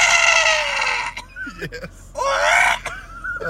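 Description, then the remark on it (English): A lizard creature in a film lets out a shrill, reverberant screech that rings out loudly, then breaks into short yelps before a second long, wavering shriek. The calls sound harsh and echoey, with no talking. “It's got the weirdest, like, reverbed noises. The like, part when he falls off the cliff and it just dies.”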